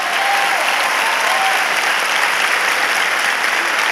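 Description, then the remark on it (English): A crowd applauds steadily, dense and loud, with no break for four seconds and a faint whistle or cheer rising briefly over the clapping, clapping to show gratitude for the word of God. “Clap today if you're grateful for the word of God.”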